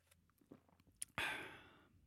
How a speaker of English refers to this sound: I get to have some coffee, which I'm going to sip right now.